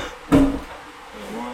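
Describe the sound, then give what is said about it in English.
A single solid clunk of a car door being opened to scan the VIN and check the tires, with a short resonant ring that fades quickly into a low, steady background hum. “All right, really quick, I'm going to open your door.”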